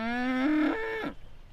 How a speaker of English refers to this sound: a herd of friendly dairy cows and Mokutua in Southland.